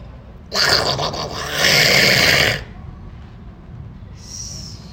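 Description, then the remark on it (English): A person, attempting Donald Duck, imitates a duck with a loud, raspy, drawn-out quacking sound lasting about two seconds, followed by a pause and a brief, fainter higher-pitched squeak. “I can't do Donald Duck. But the Duck noises were...”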